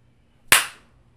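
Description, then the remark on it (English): A single sharp, loud hand clap to swat mosquitoes in a humid garage rings out against near silence, snapping in at once and fading over a fraction of a second. No one speaks. “I'm sorry, that's why I keep clapping at the air.”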